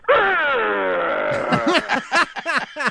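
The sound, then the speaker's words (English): A voice imitates the groaning noise a 1993 Jeep Cherokee Sport makes when the heat is turned on while driving: a loud, strained drone that sinks slowly in pitch, then breaks into about half a dozen rhythmic, wobbling pulses that gradually slow down. “Well, I have a 93 Jeep Cherokee Sport, and when I'm driving and I turn on the heat, it makes this horrible sound. And it starts like a high groan, and then it slows down and goes...”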